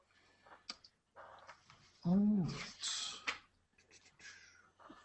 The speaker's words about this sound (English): Your dog's being naughty again, dear. My dog is being naughty.